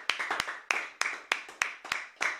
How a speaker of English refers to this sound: Someone give the Lord a clap.